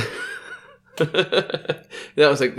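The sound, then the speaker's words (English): A drawn-out, voiced yawn fades out, then after a short pause someone starts talking in quick bursts with a chuckling tone. “that was a good yawn you're putting at you there.”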